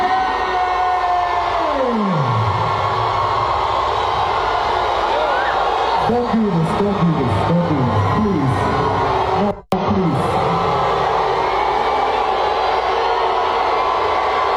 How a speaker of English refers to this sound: Those aren't cheers, folks. Okay. I mean, this goes on for another 45 seconds on this tape, and there were other tapes. I mean, there must have been 100 other tapes on the internet of this booing.